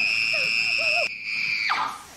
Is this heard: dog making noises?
no